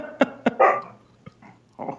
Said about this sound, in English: Apparently my dog thought that was not a funny joke there. No, he was laughing. That was her laughing at it.